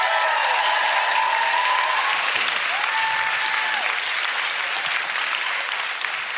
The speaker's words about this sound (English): Now, before we do a quick bit with the audience, will you please give a round of applause to my absolutely incredible guest, Mr. Tom Allen.